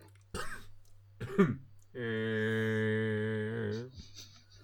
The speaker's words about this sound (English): I coughed through that second sound effect you had to do.